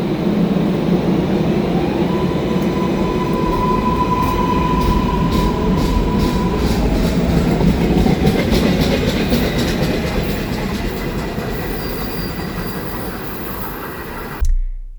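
vehicle, train running on rails

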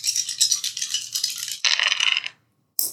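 dice rolling

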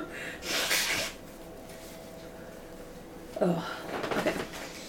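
human body sound, blowing nose

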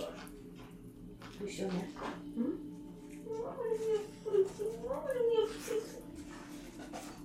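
animal, dog whimpering

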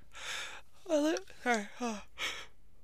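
human body sound, yawn

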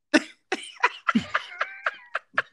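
human body sound, stifled cough

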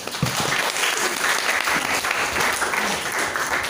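crowd, audience applause

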